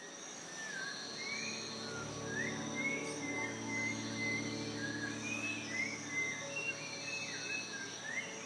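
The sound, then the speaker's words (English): A dawn chorus of jungle birds at 5 a.m. at an eco-lodge on the Rio Cangrejal in the jungles of Honduras: overlapping chirps, trills and warbling whistles rise and fall over a steady, high insect drone and a low hum, with no voices. “Seriously, listen to this bird song which woke us up at 5 a.m.”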